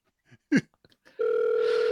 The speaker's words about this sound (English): Someone's phone ringing.